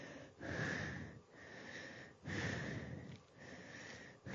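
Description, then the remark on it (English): Heavy, raspy breathing of a person in a house, with about four long, noisy inhales and exhales in a slow, steady rhythm. Each breath is separated by only a brief pause, and no one speaks. “I can hear heavy breathing.”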